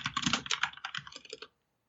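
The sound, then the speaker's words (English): Rapid, loud clattering of keys on a computer keyboard, a dense burst of clicks lasting about a second and a half before stopping abruptly, with no voices. “Are you dragging, like, your grandmother across the keyboard right now?”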